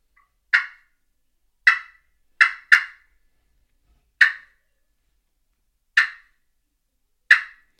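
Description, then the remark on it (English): Seven short, sharp turkey clucks imitated on a call, spaced irregularly with a quick double near the start, crisp, with no talking. “I know it doesn't sound like it, but I'm just doing some clucks. But putt, I would be.”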